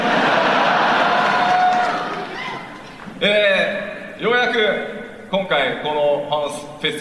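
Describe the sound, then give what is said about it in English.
At the second Final Fantasy XIV Fan Festival, a dense roar of crowd applause and cheering fills the opening seconds, then fades into loud whoops and shouted cheers from many voices rising and falling in bursts. “Yeah, you guys' applause was so loud, I forgot my lines.”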